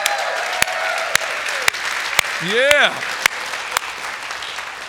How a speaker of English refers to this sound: So can you guys say a big hello with a hand clap for everybody worshiping with us at our North Platte campus? Come on.